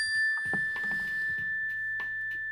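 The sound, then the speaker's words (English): A single mindfulness bell rings with a clear, steady tone that hangs and sustains for the whole stretch, with soft rustling and faint low noises beneath it. “Let's take a deep mindfulness breath when you hear the bell.”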